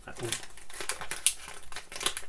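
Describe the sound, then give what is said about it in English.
Wrapping paper on a present crinkles and rustles in a run of crisp, crackly bursts, with one sharper snap near the middle and a faint voice murmuring briefly at the start. “me and my fancy wrapping paper eluding Jamie”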